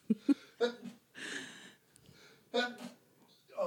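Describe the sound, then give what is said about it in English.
A single sharp, breathy sneeze bursts out, preceded by a quick intake of breath, with short murmured voice sounds before and after it. “Bless you.”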